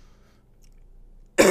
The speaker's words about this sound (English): I might die because I have bitch lungs because I've been smoking for like 10 years, so that bong hoot might kill me. I'll just cut out the coughs if I have time.